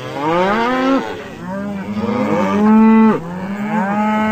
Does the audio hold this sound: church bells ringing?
no